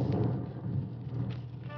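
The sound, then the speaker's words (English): A steady low rumble of thunder rolls beneath a soft, even hiss of rain, holding at a fairly constant level for under two seconds, with no voices. “Beginning to rain.”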